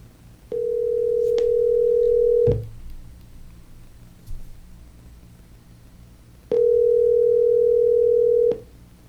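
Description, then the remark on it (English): A telephone ringback tone purrs twice while a call is being placed, each steady two-second ring separated by a pause of silence, clear and fairly loud with no one speaking. “And then that way we can all be all on the phone at once.”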